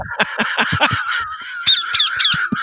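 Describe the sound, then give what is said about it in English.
A parrot squawks loudly in a rapid string of harsh, raspy calls, with a few higher screechy notes toward the end and no talking. “That's a parrot, apparently.”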